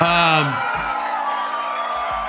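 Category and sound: crowd, crowd cheering sound effect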